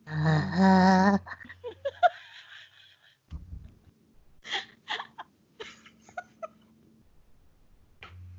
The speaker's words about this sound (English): That was a lot of heavy breathing.